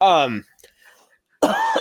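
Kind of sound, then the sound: human body sound, coughing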